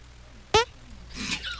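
A short, sharp fart sound, the second in a guess-who-farted game, with a brassy, buzzing tone bursts out once, followed by a faint murmur of background noise.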